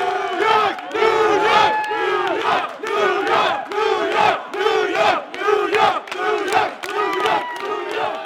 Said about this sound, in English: Everyone starts jumping in unison and chanting.